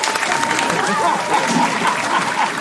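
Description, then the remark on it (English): An audience at a first event claps steadily, a dense, even wash of applause that stays loud throughout with no clear pauses or individual claps standing out. “So again, round of applause.”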